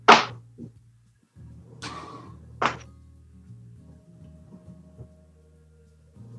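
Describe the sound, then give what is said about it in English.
Healing dice rolled onto a table, 2d8, giving a few sharp, irregular clacks and thunks separated by pauses, with softer taps afterward over a low, steady background hum. “Go ahead and roll your healing dice there.”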